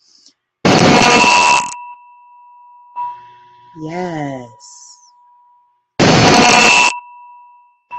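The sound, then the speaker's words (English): Two loud, metallic gong strikes during a guided meditation, each a crash of sound that leaves steady ringing tones hanging in the air. A voice speaks briefly between the strikes. “And we're going to just, I want you to feel yourself aligning and stretching with each vibration, each gong, okay?”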